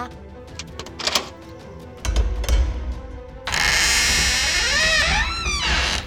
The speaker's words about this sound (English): Okay, I'm unlocking the door. Stand back.